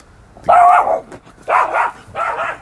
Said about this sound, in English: There go the dogs.